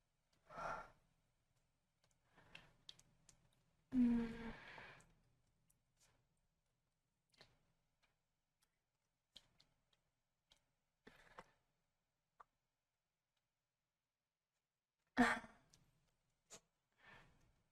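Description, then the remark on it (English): Heavy breaths puff and rasp into the mic: a few loud, irregular inhales and exhales separated by long quiet gaps, with faint clicks and small mouth sounds between them. “My breathing. Do you like it?”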